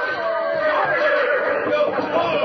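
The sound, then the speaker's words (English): Several horses whinny and squeal in a loud, continuous, agitated burst after a carriage crash, their shrill cries overlapping with a busy commotion. “Get those horses of yours untangled.”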